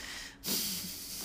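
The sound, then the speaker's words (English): A squirrel named Acorn breathing through her small nose: quick, hissy breaths, a soft airy exhale, a brief pause, then a sharper snorting sniff that holds for about a second. No one talks. “Acorn is breathing through her squirrel nose.”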